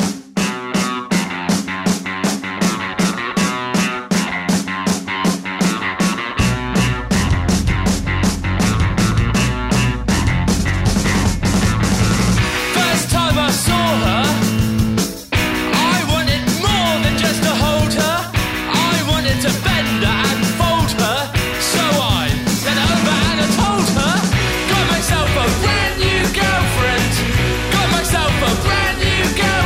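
A loud rock song with driving drums and distorted guitars, opening with a choppy rhythmic riff before the full band crashes in around six seconds, with shouted vocals over steady, dense playing.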